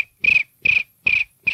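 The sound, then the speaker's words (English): A man imitates a cricket with his mouth, making four evenly spaced, buzzy chirps with a strong high-pitched tone, loud, with short silences between them. “You want to hear my impression of a cricket?”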